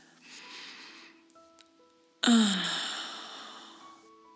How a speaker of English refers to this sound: Shall we breathe deeply together? Take a few breaths together. In through our nose and out through our mouth.